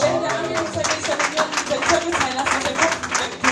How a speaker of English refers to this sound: So I told you, clap your hands.